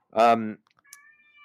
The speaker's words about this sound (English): oh my God, my cat's losing his mind over here.